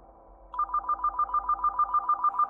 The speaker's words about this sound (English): I was on guard when the phone rang.